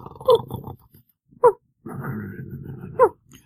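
A dog snores in its sleep: two long, rough breaths, each punctuated by a brief squeaky whimper, with a short snort in between.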